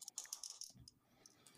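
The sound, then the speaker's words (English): A quick burst of sharp little clicks and rattles as two dice tumble across a surface, fairly loud, then settling into a soft low rumble with no talking. “And then the next one, roll two of your dice for me,”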